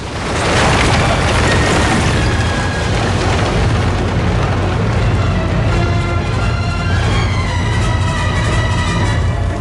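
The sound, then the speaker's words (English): A lightning bolt strikes a bridge with a sudden loud boom, knocking out almost the entire middle section, then a dense, sustained roar of rumbling and crashing continues, with metallic groaning tones rising toward the end. “Down below, a lightning bolt strikes the bridge in front of Carl, knocking out almost the entire middle section.”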